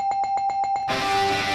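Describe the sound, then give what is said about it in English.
A bright bell sound effect signalling approval, given to the wrestling tag teams FTR and the Natural Disaster, rings rapidly, about seven quick metallic strikes in a row, then cuts to a loud burst of dense, hissing crowd-like noise. “Surely this is going to be a bell and not a buzzer.”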